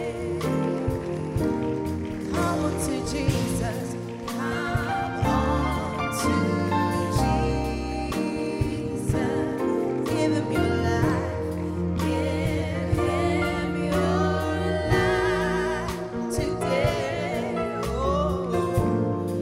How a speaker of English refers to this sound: Oh, please, clap for them as they come.